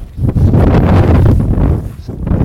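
Strong wind on a ridge beside a steep, grassy slope buffets the microphone in a loud, continuous low rumble, surging and easing slightly over a couple of seconds, with no clear talk above it.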